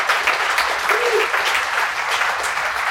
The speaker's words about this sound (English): Everybody, how about a round of applause